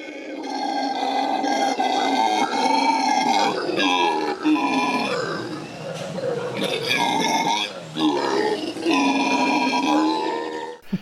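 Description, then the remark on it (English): Deep, rasping roars from howler monkeys rise and fall in long, overlapping bursts, loud and continuous with brief gaps, a guttural growling chorus that swells throughout. “But you're in the inside, you know, like focal point, insert clip of howler monkeys here.”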